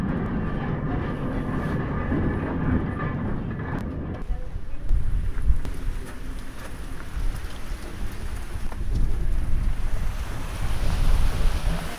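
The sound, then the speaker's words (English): Steady, dense rushing and rattling of a water mill as grain falling from the floor above is shaken down into the millstone, loud, growing rougher and more gritty partway through. “Our grain actually falls down from the floor above, and to get it to go into the stone we do this.”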